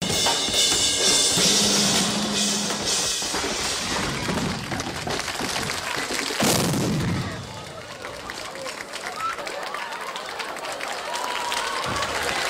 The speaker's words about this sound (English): The explosion caused a momentary breakdown in transmission across America. … claimed he was left permanently deaf in one ear, and a flying cymbal sliced into … arm.